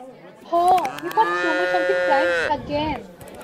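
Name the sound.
cows mooing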